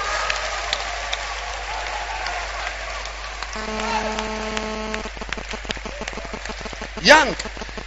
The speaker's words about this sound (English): Lembrekota, clap your hands for someone.